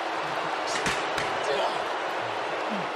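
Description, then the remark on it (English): A heavy slam as Jey Uso sends wrestler Edge crashing shoulder first into a ring post, one sharp impact followed by a smaller knock, under a steady roar of arena crowd noise. “And Uso now sending Edge shoulder first to the post.”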